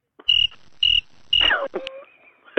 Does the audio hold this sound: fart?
no